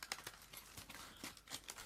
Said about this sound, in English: Hopefully everyone's not hearing too much rustling right now, because I'm just breaking off a bit of Easter egg.